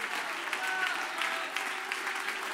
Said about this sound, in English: Give the Lord a great hand clap of praise. Now lift your voice with that hand clap and let's worship the Lord.